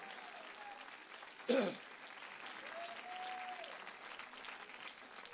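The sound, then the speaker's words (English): An audience claps their hands in praise of the Lord, a steady, dense wash of applause lasting several seconds, with a brief louder burst near the start and faint voices mixed underneath. “Come on, clap your hands and give the Lord praise here today.”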